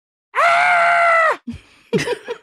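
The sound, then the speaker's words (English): A voice imitates a frightened girl's scream from the film War of the Worlds: one loud, sustained, high-pitched shriek lasting about a second, cut off abruptly, followed by brief breathy vocal noises. “A lot of screaming.”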